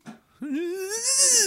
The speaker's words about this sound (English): It's the scariest door opening noise in the world. Sounds like a haunted house.